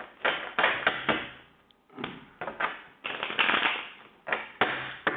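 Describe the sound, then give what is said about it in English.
A deck of cards being shuffled in several quick riffling bursts of crisp, fluttering clicks with brief pauses between them. No one speaks. “Let's get a good shuffle here.”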